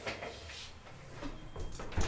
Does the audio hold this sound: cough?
no